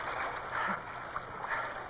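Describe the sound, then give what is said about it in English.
Rushing river water pours, churns and splashes steadily around a spinning boat caught on a rock, a loud, continuous wash of noise with small surges, with no clear voices over it. “They seem to be caught on a rock. The water's pouring.”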